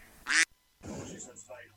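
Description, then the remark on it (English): A duck in a radio studio quacks: one short, loud, raspy quack, a brief pause, then a longer run of harsh, nasal quacking. “Duck Prevention Officer here, reporting for duty. Now, where is the little blighter?”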